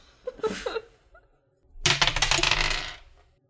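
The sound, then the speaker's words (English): Percentile dice, including a D10, clatter on a hard tabletop: a brief rattle of a few clicks first, then a longer, louder tumbling roll that rattles for about a second before settling. Distinct, with no talking. “So I am rolling a percentile dice.”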